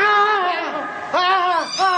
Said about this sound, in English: The cat launched herself, not at Malcolm, but at the luckless custodian.